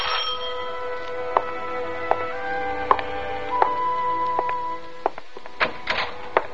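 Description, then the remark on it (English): A bell rings in a series of bright metallic strikes, each leaving a sustained ringing tone that overlaps the next, at an uneven rhythm with no one speaking. “This morning, while I'm cleaning down the stairs, who do you think should ring my bell?”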